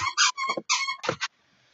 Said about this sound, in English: Hopefully Shiva doesn't do that stupid squeaky toy.